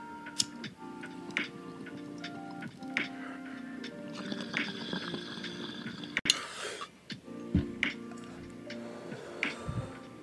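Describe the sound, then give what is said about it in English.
Someone takes a smoking hit from a bowl and coughs a little: scattered lighter clicks, wet squishy bubbling and a sharp breathy burst midway, over a faint steady hum, with no talking. “I kind of started coughing a little bit off that hit, so I'm gonna do another one and then I'm gonna tell you the story.”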